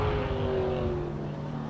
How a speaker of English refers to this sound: Watch this NASCAR while I get a glass of water. I think that's a NASCAR that has had turbos added to it. I could hear them a little bit.